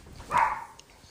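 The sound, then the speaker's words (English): A dog lets out a single short, sharp bark, moderately loud, followed by a quiet background with no talking. “Okay, one last thing that I want to add now that the dog has stopped going crazy”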